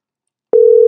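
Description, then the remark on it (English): A steady electronic telephone ringing tone of a phone call starts abruptly halfway through and holds loud and unbroken to the end, a single sustained pitch with a faint harmonic above, following silence. “Oh, we hear it ringing.”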